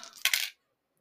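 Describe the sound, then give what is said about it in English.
Three six-sided dice (3d6), rolled for damage in a game, clatter across a hard tabletop in a quick, bright rattle lasting about half a second, peaking with two sharp knocks before stopping abruptly into silence. “Do your damage. 3d6.”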